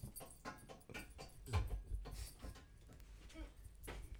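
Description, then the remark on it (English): A dog named Mabel clinks her metal tags lightly and irregularly as she moves around, a string of soft jingling taps mixed with faint shuffling and padding, with no talking. “And now she's going to clink everywhere she walks.”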